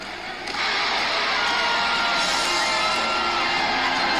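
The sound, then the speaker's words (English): A large wrestling crowd at Ring of Honor cheers loudly for a wrestler, a dense roar of voices that swells sharply after a brief moment and holds steady with scattered whoops and yells. “People were cheering for him.”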